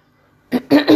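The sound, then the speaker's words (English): After a moment of quiet, someone with a slight cold clears their throat in two or three rough, raspy bursts, the last one drawn out and loud. “Excuse me, my throat, right?”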